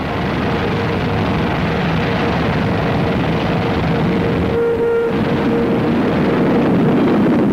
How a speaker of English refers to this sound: Jet-propelled, the V-2 rises faster and faster, until a speed of 50 miles a minute is attained.